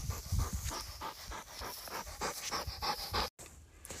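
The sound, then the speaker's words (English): A hunting dog named Shaq pants rapidly and heavily in a steady, rhythmic run of quick breaths as he comes back for water during a prairie chicken hunt, loud and continuous, with a brief dropout near the end before the panting resumes. “So I guess we'll water him, and then we'll go ahead and head back towards the truck.”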